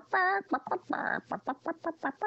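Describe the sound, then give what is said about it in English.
A voice imitates a chicken, opening with a drawn-out squawk followed by a rapid run of short, rhythmic clucks, fairly loud with no other sounds. “He used to just cluck.”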